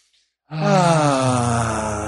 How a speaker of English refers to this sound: So here we go. Let's just take a nice cleansing breath.